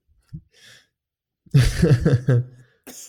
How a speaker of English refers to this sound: Okay, people listening, he's coughing very heavily.